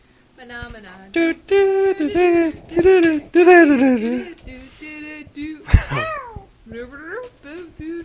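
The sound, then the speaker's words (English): A cat meows repeatedly, a run of loud, drawn-out cries that rise and fall in pitch, with some talking mixed in among them. “And this is the kitty.”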